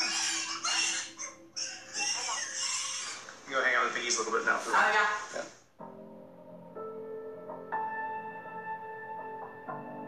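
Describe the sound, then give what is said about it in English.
A busy chorus of 35 pigs grunting, oinking and squealing over one another for about six seconds, just after all being injected with a new round of vaccine, then it cuts to a steadier, quieter tonal sound. “We just injected all of these pigs with our new round of Sinovacs.”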